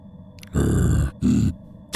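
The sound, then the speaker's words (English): A person imitates the growl of a large bear making a motioning noise towards its haunches. There are two loud, low, rough bursts, the first longer than the second, separated by a short pause. “Olgrim, you slowly catch up and see this bear making some sort of motioning noise growl towards its haunches.”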